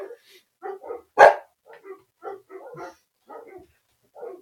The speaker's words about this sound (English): And anytime they see anything happening outside, there's barking.